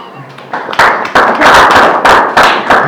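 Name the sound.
hand clapping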